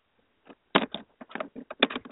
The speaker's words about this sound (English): I hear typing.